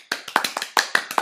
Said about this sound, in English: Clap.